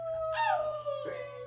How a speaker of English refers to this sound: And with that, you hear a howl in the distance.